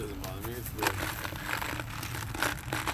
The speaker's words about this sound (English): You can hear me crunching the M&Ms even louder.